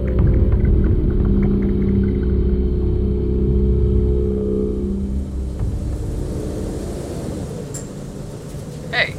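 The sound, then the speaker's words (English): A steady, heavy engine rumble fills the inside of a bus nearing a stop, loud at first with a droning hum, then easing slightly as the bus slows, a brief clatter near the end. “On the bus. I'm just about at my stop.”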